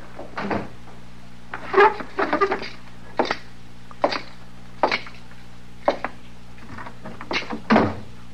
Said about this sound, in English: Oh, say, you want me to close the door into the back?